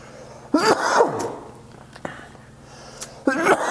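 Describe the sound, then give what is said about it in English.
A short run of harsh coughs: a strained double hack, a lone sharper cough, then another rough burst, separated by brief pauses. “Well, yeah, you see my ass coughing like crazy.”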